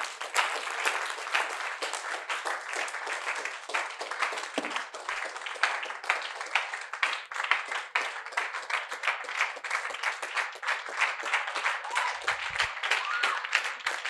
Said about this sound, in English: Rise to your feet. Thank you for clapping for me. Now clap for Jesus.